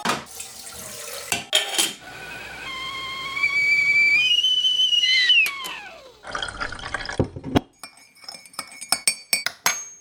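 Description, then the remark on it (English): A kettle filling from a running tap, the water's pitch climbing in steps as it fills, then the flow cuts off, followed by clinks and clatter of the lid and handle. “I'm going to put the kettle on.”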